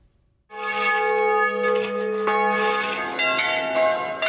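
Church bells ring out loudly on Easter Sunday morning in the ridgetop town of Vignone in Molise, Italy, where bells chime from 14 churches. After a brief quiet start, their rich overlapping tones sustain and layer as several strikes blend together, with no voices present.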